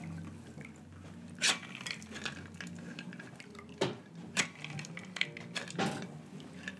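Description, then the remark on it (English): Liquid is poured in short bursts into shot glasses, trickling and splashing with some spilling onto the table, with several sharp glassy clinks and taps scattered through the pour. “Put the pour out of the bigger one.”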